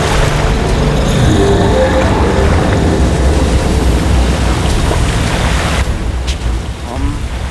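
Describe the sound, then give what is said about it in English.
A sophisticated robotic security weapon surges up out of the water with a loud, steady churning roar and a low mechanical drone, continuous, thinning briefly near the end before swelling again. “Something's rising out of the water.”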